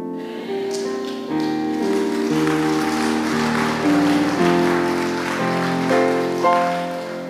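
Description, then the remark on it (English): An audience claps steadily in a dense, continuous wash of applause, with sustained musical notes from a keyboard or organ shifting pitch underneath, no speech. “If you didn't clap, you clap.”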